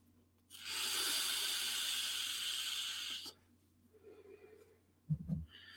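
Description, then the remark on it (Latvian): A vape device with a PnP tank gives one long, whistling draw of airflow as it produces vapour, a steady loud hiss with a high airy whistle lasting about three seconds, followed by quieter faint hisses and a brief low thump. “Diezgan tāds svilpīgs, tāds svilpas man viņš izklausās tāds.”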